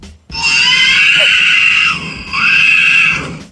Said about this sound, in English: This guy's recording the baby screaming on the plane, and he thinks it sounds like R2-D2 from Star Wars. Okay. He has posted the video. Right. Here's what it sounds like.